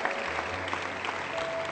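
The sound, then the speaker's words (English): An audience at Summit Church applauds after a prayer, giving God a round of applause: a dense, steady wash of many hands clapping at an even loudness with a low hum running underneath. “Yeah, give God a round of applause today.”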